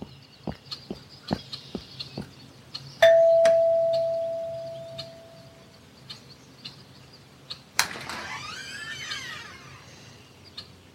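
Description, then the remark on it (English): A single doorbell ding at the door of Number 9 Nelson Street, a house on a back street, rings out clearly and fades slowly over a few seconds, surrounded by faint clicks and taps, followed a few seconds later by a brief scraping, creaking noise. “Shall I ring the bell? Ring it.”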